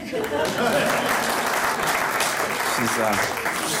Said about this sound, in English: My Aunt Marguerite's 85 years old, just graduated from medical school, polite applause.